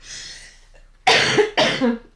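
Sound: coughing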